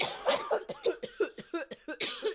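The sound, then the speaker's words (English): A loud fit of harsh coughing after inhaling a dab of gelato cake cannabis concentrate from a rig, about nine rapid raspy bursts in quick succession with brief gasping breaks between them, and no talking. “The coughs hit late.”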